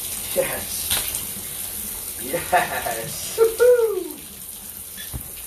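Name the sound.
shower water running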